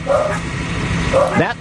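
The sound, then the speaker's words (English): Dogs bark in two short bursts, one near the start and another just over a second later, loud over a steady low background hum. “Guys, stop. Lisa's not here, so I'm alone with the dogs, you guys.”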